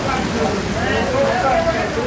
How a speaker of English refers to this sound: Here, check out the rain. Oh wow!